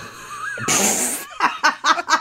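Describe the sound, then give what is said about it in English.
A loud, rasping throat clearing: one long harsh burst of breathy noise followed by four short, gruff pulses in quick rhythm, with no talking. “Thank you for clearing your throat and breaking in.”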